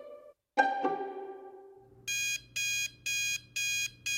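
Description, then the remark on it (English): An alarm clock goes off at 4 a.m.: a short tone and a ringing chime fade out, then loud, harsh electronic beeps repeat in a steady on-off rhythm, with no talking. “My alarm goes off at 4 a.m.”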